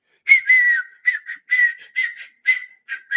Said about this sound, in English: I can't wait, because when I wake up in the morning, I whistle.